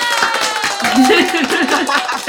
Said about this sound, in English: Do you like the virtual clapping, the virtual audience? That's amazing.